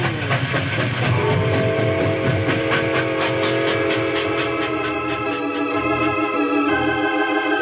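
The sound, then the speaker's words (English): A locomotive train pulls away, rumbling steadily with dense mechanical clatter and a sustained whistle-like tone riding on top, loud throughout, with no voices. “A locomotive can outrun a horse any day.”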